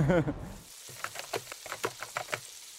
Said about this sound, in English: Frying food scares me because it's boiling oil. I was terrified of the oil coming out of the pan and getting to my skin.